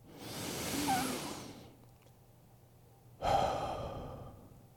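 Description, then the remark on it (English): A deep, slow breath: a long airy inhale lasting over a second, a brief quiet pause, then a steady breathy exhale. No one speaks. “On that note, would you take a deep breath with me?”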